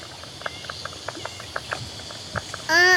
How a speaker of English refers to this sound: we found some striped marsh frogs at Sydney Park